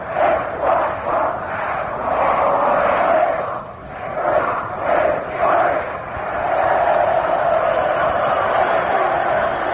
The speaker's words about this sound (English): Here's a Notre Dame cheer from across the field with time out. Let's listen.